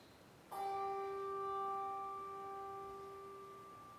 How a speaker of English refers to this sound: As each name is read, a candle is lit and a bell is tolled in their memory.